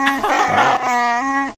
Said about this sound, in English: Was that an animal or like screeching a chair across the ground? That was a Wookiee. That was Chewbacca.